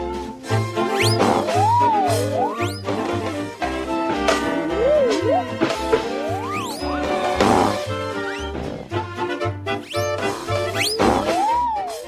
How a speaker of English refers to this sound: The fad got so ridiculous that in 1927, Laurel and Hardy released a short titled Battle of the Century featuring a pie fight with over 3,000 pies, all set to whistle slides and fart noises. Take a listen to this.